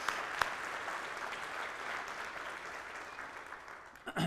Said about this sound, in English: So thank you all of our music leaders and all the choir leaders. That's mighty wonderful. Give them a hand of applause, too.